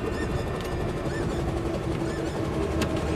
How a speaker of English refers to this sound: As the chopper lands, we can hear the birds in their travel boxes calling.